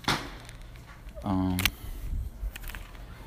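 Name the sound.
fireworks popping outside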